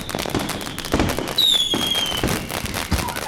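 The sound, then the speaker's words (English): Fireworks bang and crackle in quick, irregular succession in an enclosed space, with a high whistling rocket gliding downward midway through; the bursts are loud and steady throughout, with no talking. “For the sake of time, we had to cut most of that out, but what a spectacularly noisy two-hour puppy firework display that was.”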